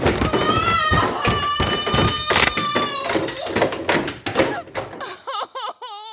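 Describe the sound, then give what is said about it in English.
A body tumbles down stairs from a secret door at the top, a rapid, irregular run of heavy thuds and bumps lasting several seconds, with a voice crying out over the impacts and a wavering groan at the end. “You're right at the top of the stairs, at that secret door.”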